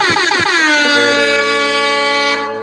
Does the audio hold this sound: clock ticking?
no